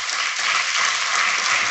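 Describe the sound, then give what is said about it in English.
An audience bursts into steady applause for a 97-year-old woman, a dense wash of many hands clapping at once that stays loud and even throughout, with no voices standing out. “Give her a clap.”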